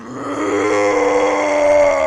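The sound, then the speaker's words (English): A sustained, loud, guttural roaring scream from a massive monstrous creature made of chains and gears, rough and harmonically dense, swelling slightly as it holds for about two seconds with no talking. “The sound of what you assume hell must sound like as this creature just”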